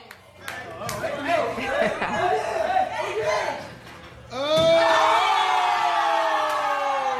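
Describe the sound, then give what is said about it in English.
A lively crowd murmurs and chatters with scattered whoops as a man runs and does a front flip off a trampoline, then a loud sustained cheer swells up partway through and holds strongly to the end. “I'm mostly just hearing a crowd stares.”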